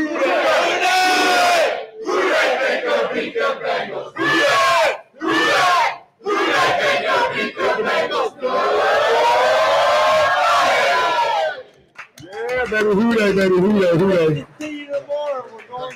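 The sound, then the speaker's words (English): A large crowd loudly shouts the "Hoo Day" football team chant on a count of three, as loud as they can, in short rhythmic bursts, swells into a long sustained roar, then breaks into ragged shouting and cheering. “we cannot end a Talking Football with … and Friends segment without saying a Hoo Day chant”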